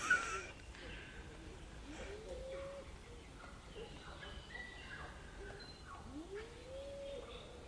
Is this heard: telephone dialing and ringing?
no